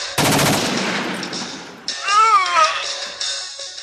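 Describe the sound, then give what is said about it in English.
A rapid, loud burst of "pew pew" sound-effect gunfire for a firing range rattles for about a second and a half, then stops abruptly and gives way to a drawn-out, wavering cat meow. “So we'll go through these and hopefully Ryan can add the pew pew sound for the firing range.”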